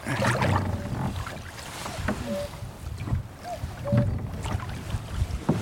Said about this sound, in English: So, listen to that cuckoo. Still on the island, I think.